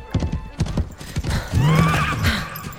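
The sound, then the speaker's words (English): The hooves of the Nokk, a water spirit horse ridden by Elsa, clip-clop in a quick, uneven series of sharp knocks for about a second and a half, then a loud, drawn-out whinny rings out over a few softer steps. “Oh, and the water knock, you're riding it?”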